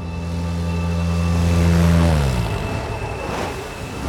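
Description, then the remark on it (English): A steady boat engine drones, then winds down in pitch and cuts out about halfway through, leaving only a soft, airy background hiss. “The sound of the boat cut out. It had stopped.”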